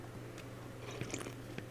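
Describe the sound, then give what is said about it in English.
Someone takes a quiet drink: soft wet sips and a couple of swallowing clicks over a steady low hum, with no talking. “Forgive me, had to wet my whistle.”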